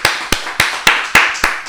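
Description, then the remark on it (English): Sharp hand claps land in a steady, even rhythm, about seven loud slaps roughly three per second, over a continuous bright hiss like scattered applause filling the gaps. “Well, shit, clap it up.”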